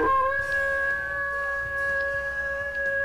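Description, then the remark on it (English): A wolf lets out one long, steady howl, holding a clear sustained pitch for about three seconds after a quick rising start. It is fairly loud and heard alone, with no talking. “He's out howling at the moon right now.”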